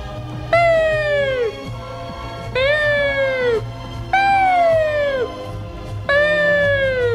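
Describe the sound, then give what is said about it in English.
A voice imitates an ambulance siren with four high, falling wails, each about a second long and separated by short pauses, loud over a faint low background hum. “That's an ambulance coming to take me away because the sight of you stopped my heart.”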